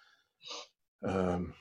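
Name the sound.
sneeze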